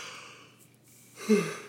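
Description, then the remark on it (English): A single drawn-out yawn: a long airy inhale that swells near the end into a brief, louder, low-pitched voiced groan. No one speaks. “There's the signature yawn.”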